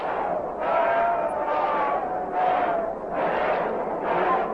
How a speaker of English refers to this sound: He says base hit. A bunt base hit for Jim Stewart. Crowd is not in full agreement, as you can hear.